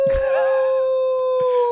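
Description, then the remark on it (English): A single eerie, wolf-like howl holds one steady, mournful pitch for nearly two seconds, loud, with brief low thumps at the start and again near the end. “That's the death howl for this theory.”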